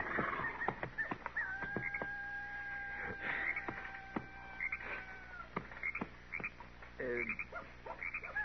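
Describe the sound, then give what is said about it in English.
Many coyotes out at night yapping and yipping in a scattered chorus of sharp, high barks, with one long, steady howl holding its pitch for several seconds before breaking back into excited yelps. “Miss Kitty sure was right about those coyotes. Every one of them and his brothers out tonight, all yapping their fool heads off.”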